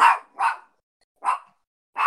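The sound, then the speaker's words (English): A dog barks four times at a house in an uneven rhythm, sharp, fairly loud bursts with short silent gaps between them, and no one speaking. “By the way, if you guys are hearing barking, I'm so sorry.”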